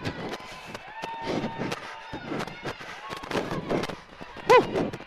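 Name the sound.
crowd shouting and cheering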